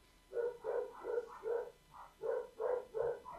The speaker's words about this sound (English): Oh, the dogs are barking. They're out of my control. Is the mailman there? It's Sunday. We're getting a delivery of mulch, so the dogs aren't happy about that.